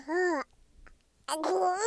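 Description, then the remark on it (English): A baby boy, sitting in a lap and grabbing the microphone, babbles in two vocal bursts, high and singsong with wavering pitch, separated by a short near-silent pause. “Here in my lap is a very awake little baby.”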